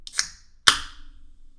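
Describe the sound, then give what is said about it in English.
A brief fizzing hiss, then a sharp metallic crack as an energy drink can is opened, followed by a bright spraying hiss over a desk that fades out over about half a second. “That is not a NOS energy drink, and it just got all over my desk.”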